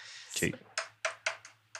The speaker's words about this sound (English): Also, your sound's on for the dice, which is kind of fun. Not necessarily a problem.